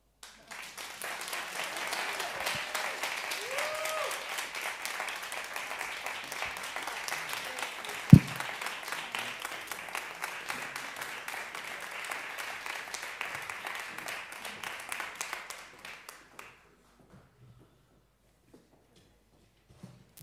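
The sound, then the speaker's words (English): A crowd gives a speaker one more round of applause after his talk, clapping steadily for about fifteen seconds, a dense wash of clapping with one sharp louder clap partway through, then it cuts off into near silence. “Can we please give him one more round of applause”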